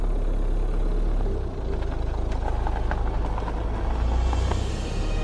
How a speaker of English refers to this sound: as he drove the car through the streets of Gotham.